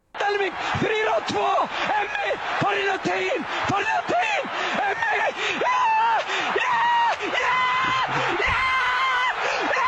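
A sports commentator at an Icelandic soccer match yells excitedly and almost nonstop, his voice climbing into high, sustained screams as a goal is scored. It is loud, with no pauses for the whole stretch.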